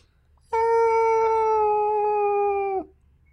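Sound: voice imitating whale song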